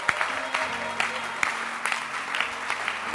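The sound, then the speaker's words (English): A crowd claps hands for a church in sustained, dense applause, sharp individual claps popping out of a steady wash of clapping, with a faint low hum underneath. “So I want you to clap your hands for this church.”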